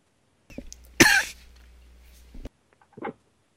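A harsh, raspy hacking cough bursts out, followed by a couple of shorter, quieter throaty sounds, with no talking around it.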